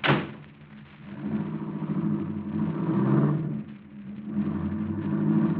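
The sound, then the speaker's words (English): A car engine turns over and settles into a steady rumble, then revs up and pulls away, its low drone rising and falling as it drives off. No one speaks. “Then you better slip over here and drive this car.”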